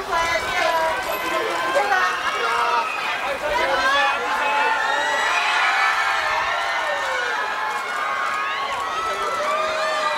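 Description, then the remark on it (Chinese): A crowd of fans in Hong Kong screams and cheers continuously as Thai stars Mai and Appun appear, with many high-pitched overlapping shrieks rising and falling in waves, loud, filling the whole stretch without a break. “而两位来自泰国的男神 Mai 和 Appun 亦相当有魅力，他们一出场尖叫声此起彼落，二人亦表现得相当亲民啊！”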